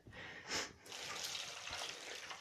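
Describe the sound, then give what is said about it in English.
Water pours in a steady, hissing stream into soup being made, after a brief splash at the start, continuing at moderate loudness for a couple of seconds with no talking. “Alrighty, let's put in the water.”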